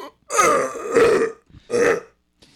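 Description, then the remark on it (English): A loud burp rolls out in a long, gravelly stretch, followed after a brief pause by a second shorter burp, with no talking over them. “Man, it's so funny to burp during this. I love that I'm burping during this.”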